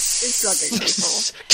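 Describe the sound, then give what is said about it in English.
A voice imitates a spray bottle spraying vodka with a steady, breathy hiss lasting over a second, with a faint voiced murmur under it and a sharper final spritz at the end. “So you're suggesting that Bates is going up to this old woman in the mine and just like spraying Infinity, vodka.”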